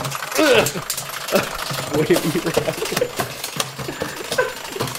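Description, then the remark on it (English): Unpopped popcorn kernels rattle and click irregularly inside a container, a busy clatter of sharp taps, with muffled vocal sounds mixed in underneath. “Oh, God, you're rattling around in there like a washing machine.”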